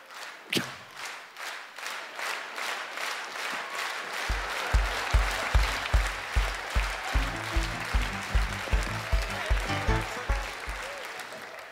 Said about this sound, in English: clapping can't stop.